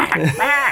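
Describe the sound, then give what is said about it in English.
A person imitates a goose honk with a short, nasal, buzzy vocal burst that rises into a sustained bright honk, lasting under a second at moderate loudness. “Getting a geese honking.”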